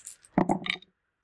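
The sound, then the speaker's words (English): Dice rattle and clatter across a hard surface in a quick burst of bright, clicking knocks lasting under half a second, then stop and fall silent. No one speaks. “Okay, so I'm rolling right now.”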